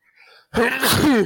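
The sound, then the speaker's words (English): A man sneezes once, loudly: a faint breathy inhale, a short pause, then a sharp explosive burst trailing into a voiced, drawn-out finish. “suddenly got woken up by his man sneeze right then.”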